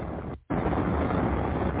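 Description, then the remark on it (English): A big explosion at a cluster munitions depot: a loud, dense roar of rumbling noise that cuts out for a split second, then surges back and keeps booming steadily. It sounds muffled and has no voices. “Listen to this. This is a big explosion.”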